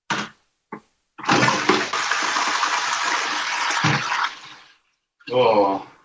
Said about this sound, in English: Do you have one of those like industrial toilets that just like shoots the water straight down? Yeah, the water sort of comes from the top. I think it sort of spins right.